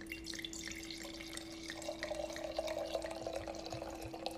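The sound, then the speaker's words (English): Wine pours steadily from a bottle into a glass, a continuous gurgle and splash with a rising tone as it fills, with no talking. “All right, here we go. We're going to pour.”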